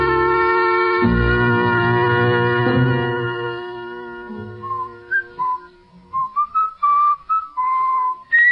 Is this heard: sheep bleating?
no